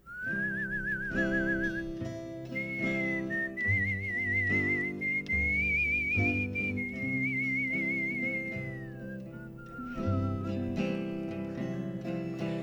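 A person whistles a slow, wavering melody with vibrato, clear and up front, carrying the tune over a soft band accompaniment of guitar and bass for about twelve seconds, during the intro of a studio recording take.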